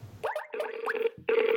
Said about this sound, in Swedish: Vi ringer upp den som kan det allra bäst.